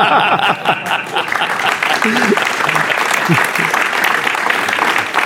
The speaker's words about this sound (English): That is the first time I've got a round of applause for destroying myself on stage.